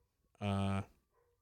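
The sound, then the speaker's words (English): A dog, not the speaker's own, gives one loud bark, a short sharp burst that cuts off quickly, followed by quiet. “No, but it was funny because we took a pause and then you just hear sirens and a dog.”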